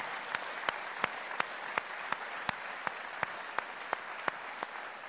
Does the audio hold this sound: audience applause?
yes